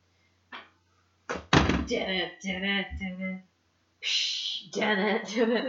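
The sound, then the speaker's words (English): A door swings back and forth, giving a soft thump and then a run of loud, drawn-out creaks and groans that stop briefly and start again. “Keep swinging that door.”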